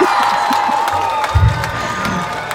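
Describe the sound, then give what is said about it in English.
Spliced-in crowd noise: a crowd cheers and whoops loudly and steadily, a dense wash of voices with scattered shouts and some clapping, with no talk over it. “Can we splice in some crowd noise just to make it seem like we're really big time?”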